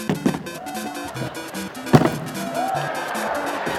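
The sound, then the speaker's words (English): Two sharp, heavy stomps on an idol, a loud crunching thud near the start and an even louder one about two seconds later, with voices murmuring underneath throughout. “All right, that was some pretty epic idol stomping.”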